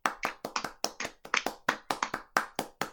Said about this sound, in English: So yeah, I think it gets a little golf clap.